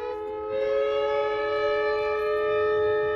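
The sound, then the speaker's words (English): Emergency sirens at the Chevron refinery in Richmond, California, sounding during a fire at the refinery as a shelter-in-place alarm, wail in a loud, steady drone, several sustained tones layered together and holding level for the full stretch with no voices present. “Emergency sirens roar at the Chevron refinery in Richmond, while a fire at the refinery sends flames and a plume of thick black smoke into the sky.”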